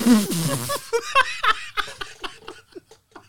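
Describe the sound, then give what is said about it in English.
A drawn-out, low, gurgling burp lasting under a second, followed by a run of short, breathy bursts of laughter that fade toward the end. “I think I got a burp.”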